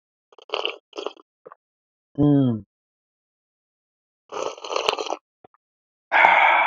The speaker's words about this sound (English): If you have your coffee mugs, your travel mugs, your sippy cups, your doggy bowls, if you have a beer hat and you want to drink it like that, then go ahead and do so and join me in this sip of coffee steam.